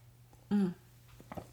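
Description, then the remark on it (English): A quick sip of a caffeinated drink: one brief, fairly loud slurp, then a pair of soft swallowing clicks, all over a low, steady background hum. “I have some caffeine right here. I need to take a sip.”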